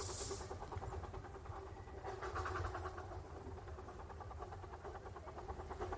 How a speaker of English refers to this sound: But we stand and we await the train. The whistle blows. Train conductor says, take a break, driver 8. And with the release of steam, the train goes on.